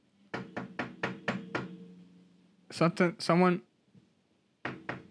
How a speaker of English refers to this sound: Someone's knocking while I'm... I think someone's knocking.